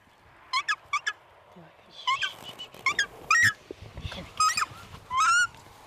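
Young takahē give a series of loud, honking calls in short uneven bursts with brief pauses, over soft rustling and handling noises, as a ranger at Burwood Bush catches them and puts them carefully into travel boxes.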